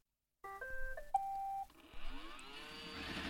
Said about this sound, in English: I have a smart vacuum here. Yes, I do vacuum my shed. Weird, I know. Tell Roomba to start.